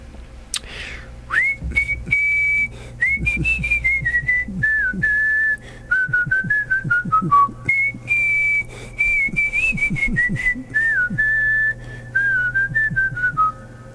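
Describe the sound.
A person whistles a melodic tune, the clear pitched notes gliding and stepping for the full length, with faint soft background noise and no talking.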